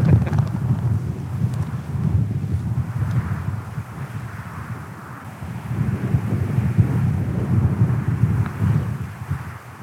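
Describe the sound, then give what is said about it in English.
Strong, steady wind roars and buffets, a deep gusty rumble that swells and eases over about ten seconds, with no voices, as wind whips across open water, raising white horses (whitecaps), on a chilly day. “The wind is whipping across the water there, creating horses, I can see.”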